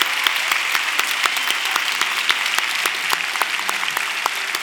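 A church audience applauds steadily for people who stepped out of their seats and came down to the front, many hands clapping in a dense, bright patter that holds at an even level for several seconds without any voices on top.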